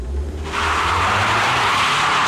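A low engine rumble gives way to a loud, sustained tire squeal as a souped-up Japanese import drag racing car launches and speeds off in an illegal street race on dusty Los Angeles streets, the screech filling the rest of the moment with roaring motor underneath.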